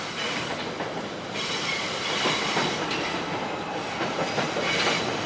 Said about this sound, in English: And this is the number 2 and 5 line. elevated train. We're about to pass under here. So it also gets quite a bit noisier with street traffic and train traffic.